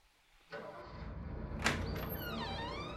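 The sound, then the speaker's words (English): A large, heavy package is left at the door of a house, with a sliding, rumbling onset, a single sharp thump partway through, and a drawn-out scraping whine as it settles. “Something large is being left at the door of the house.”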